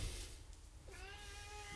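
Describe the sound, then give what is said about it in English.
A single drawn-out meow from Spaghetti, the camp cat, clear, rising in at the start and holding steady, set against a low background rumble with no talking. “And then Spaghetti, the camp cat, seems concerned.”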